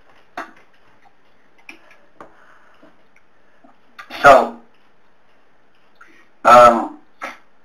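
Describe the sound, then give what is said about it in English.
Someone drinks water: a few light clicks and taps of a glass being handled, then two short, loud bursts of gulping and breathy exhaling, with no talking. “Let me just get this water.”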